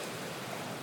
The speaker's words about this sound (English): The ocean waves softly crest and fall.